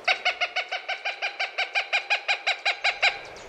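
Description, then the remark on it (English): A Cooper's hawk calls a rapid, steady series of about sixteen harsh, nasal cackling notes, evenly spaced and fairly loud, with no voices or other sounds around it. “a certain type of hawk, the Cooper's hawk, is especially common in Chicago these days, which is a change.”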